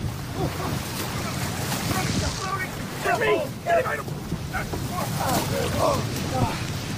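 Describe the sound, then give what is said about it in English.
Rough, churning water and gusting wind roar steadily around a boat near land in stormy weather, with a broad rumbling wash and occasional surges, while muffled voices speak faintly underneath. “We're near land. Oh, it's not good, sir. Not in weather like this.”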